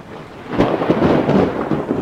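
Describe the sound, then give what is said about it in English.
Heavy rain pours steadily while deep rumbles of thunder roll through, with a sharp crack near the start and low booming continuing underneath the constant downpour. “The rain started up again.”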